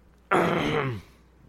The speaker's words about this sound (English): Like a cough.